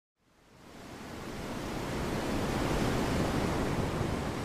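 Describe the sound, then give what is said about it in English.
A broad, steady rush of ocean waves swells up from silence over the first couple of seconds, then holds as a dense, continuous wash of surf with no voices. “A merchant ship carved its way through the waves of the Crispian Sea.”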